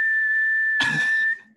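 A single high whistle tone from a whistle being blown holds steady for over a second, joined partway through by a breathy, rushing burst before it abruptly cuts off. Fairly loud, with no talking.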